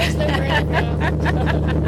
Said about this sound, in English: And yeah, we'll give it a little pause. Okay, the car is off.